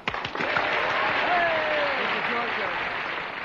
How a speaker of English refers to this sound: Cue. Just a minute. Wait a second. Okay, cue the clap now.